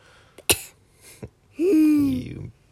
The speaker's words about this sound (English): So everybody in the house was coughing. Yeah, just like that. Cough, cough, cough.